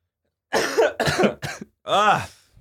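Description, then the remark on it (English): A series of harsh coughs: three quick bursts in a row, a short pause, then one longer, rasping cough with a throaty, vocal edge, heard alone without talk. “I still got this fucking cough.”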